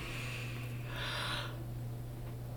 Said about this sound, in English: Bless you. Oh, no, you're yawning. I'll take the blessing.